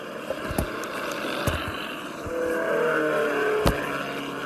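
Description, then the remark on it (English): Sixteen compact cars, including Valiant, Tempest, Falcon, Lark, Corvair and Saab, race along a track, engines droning and whining together at a steady, fairly loud level, with a few sharp clicks and knocks punctuating the continuous motor noise. “16 compact cars, including Valiant, Tempest, Falcon, Lark, Corvair, and Saab, are in the starting lineup.”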